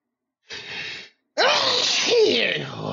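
A short breathy intake is followed after a brief pause by a loud, forceful sneeze that trails off with a wavering, whiny tail, close to the microphone and with no talking.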